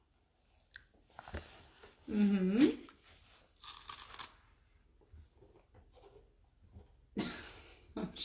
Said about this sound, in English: I'm sure my listeners just would love to listen to you eat cheese puffs. Mmm. Mmm. Do you love cheese puffs? Yeah? Can you grab another cheese puff?